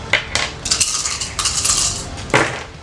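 Dice clatter and tumble across a hard tabletop, a quick series of bright clicks and rattles that bunch together, pause briefly, then finish with a final sharp knock. No voices.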